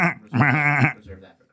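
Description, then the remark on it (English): A person imitates a goat, letting out a loud, quavering bleat, with short shakier bleats trailing off on either side. “Goat's mail. Bleat, bleat, bleat.”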